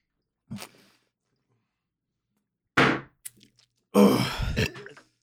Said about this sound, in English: Ladies and gentlemen, if you're listening to this and not on the live stream, we have a good old-fashioned Canadian maple syrup chug-off.